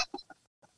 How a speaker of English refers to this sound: So I missed the mute on the cough and then muted myself after. Good job. It sounded like a cat with a hairball.